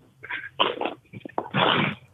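A dog named Brutus chews and mouths a plastic water bottle, producing several loud crinkling and crunching bursts in quick succession, ending in a longer sustained crackle.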